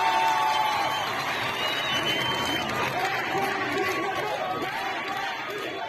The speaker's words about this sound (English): In this video shared to social media, a crowd chants "Death to the dictator" and cheers as a woman cuts off her hair in the street.